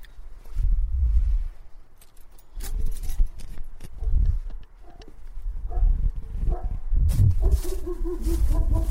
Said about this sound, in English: Ah, gonna have to ring the doorbell, and here comes the barking.